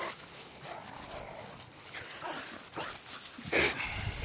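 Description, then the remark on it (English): A dog named Mitzi barks and whimpers in short, scattered bursts over steady background noise, with one sharper, louder yelp near the end; no one speaks. “These dogs.”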